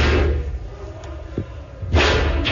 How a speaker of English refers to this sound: During which time they listened to the invaders banging on that door, as you can hear on a recording from one of the staffers' phones.